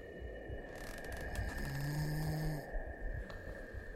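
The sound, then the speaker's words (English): A man snores once in a dark flat, heard through an opened window: a long, rough, throaty rasp rising and falling over a couple of seconds, with a steady high electrical hum and low rumble underneath. “Hidden in the dark, as the convicted burglar crept along the concrete slit, "I opened the window and heard a man snoring."”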